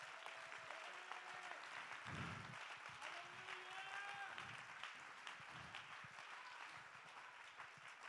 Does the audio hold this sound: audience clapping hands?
yes